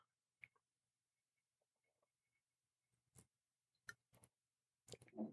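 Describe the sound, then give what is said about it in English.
Someone takes a drink: a few soft, scattered clicks and mouth sounds in quiet, then a short wet slurping sip at the end. No one speaks. “Taking a sip of this.”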